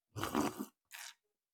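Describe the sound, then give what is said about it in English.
A noisy slurp of coffee, followed a moment later by a shorter, airy sip, both fairly quiet with no talking. “As I sip coffee.”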